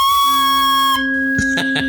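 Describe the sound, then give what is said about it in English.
A person imitates a flute playing the shatter song with a whistled tune: a long, steady high note held for about a second, then a few short, pulsing notes on a lower pitch. No talking. “takes out his flute and plays the shatter song. Sounds like...”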